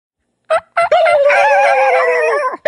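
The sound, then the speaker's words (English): A hen turkey's tree yelp call: two short nasal notes, then a long, drawn-out wavering call, fairly loud, with no talking over it. “Okay, hit me with the tree yelp again.”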